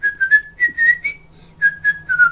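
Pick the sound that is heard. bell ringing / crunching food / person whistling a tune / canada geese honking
person whistling a tune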